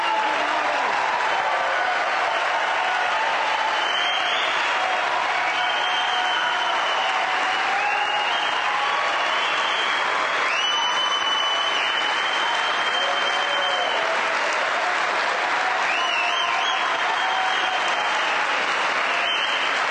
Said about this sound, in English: So let's just start off, release a little tension by sitting back, looking and giving a huge round of applause for the most remarkable person that a lot of us have ever met.